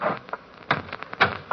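A door is pushed shut, with a few hollow knocks and a firmer thud near the end, all in quiet with no talking.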